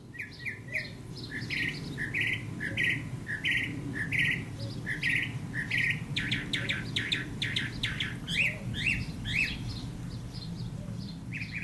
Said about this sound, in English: I'll give them at least this credit. The birdsong of the common mockingbird is quite beautiful.